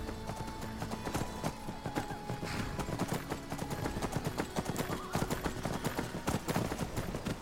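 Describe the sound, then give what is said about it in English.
Hooves clip-clop as a horse gallops up a road in a fast, steady gallop, loud, a continuous stream of sharp hoofbeats with a faint tonal hum underneath. “I'm just going to gallop up the road a bit.”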